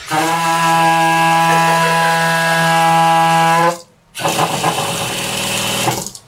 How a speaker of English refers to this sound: For example, this is not a Yeti. It's simple home plumbing with air in the lines. An issue plumbers call water hammer.